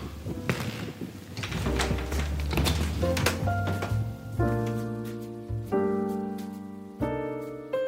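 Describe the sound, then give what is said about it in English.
A deadbolt clunks and rattles open, followed by the scrape and thump of a door being pushed open, then steady sustained musical tones ring out on their own. “The sound of the deadbolt opening and then that sound of pushing the door open, those are sounds I've always known.”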